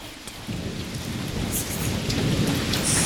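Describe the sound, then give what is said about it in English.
Steady, heavy rain pours down with a dense hiss, joined by deep rumbling that swells low beneath it, like thunder rolling through a storm. No voices are heard. “It's the rain.”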